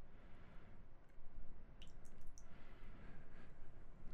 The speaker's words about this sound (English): I'm pouring it right on the ice. Yeah. Yeah, that's the way to do it.